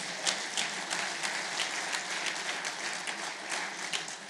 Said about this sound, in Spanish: Cuanto créelo, si usted lo cree, dale un aplauso fuerte, Señor.